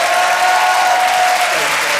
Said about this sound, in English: ladies and gentlemen, please give a massive round of applause. Ed Gamble!